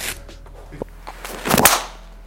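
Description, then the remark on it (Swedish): A golf driver whooshes through a swing and strikes the ball with a sharp crack, preceded by a few quieter clicks. The single loud shot stands out against a quiet outdoor background. “Jättefint slag.”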